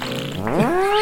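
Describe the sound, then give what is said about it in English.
A voice blows a buzzing, wet raspberry imitating a fart, about one second long and fairly loud, its pitch sliding upward toward the end. No one speaks. “Fart on it, and then I run.”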